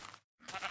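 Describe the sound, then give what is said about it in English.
A sheep bleats twice in quick succession, two short, fairly loud baas separated by a brief gap of silence, with no talking over them. “Pink sheep.”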